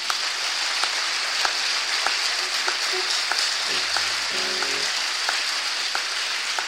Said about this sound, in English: Let's give it up to the Lord. Hallelujah. You want to give the Lord a clap offering.